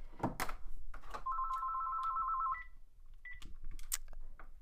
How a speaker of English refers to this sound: There's a phone ringing in the background and I want to apologize. I'm going to need to shut that off. One second here.